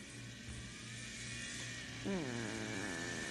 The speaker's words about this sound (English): Oh, next gen sounds really good, actually. Well, the exhaust does.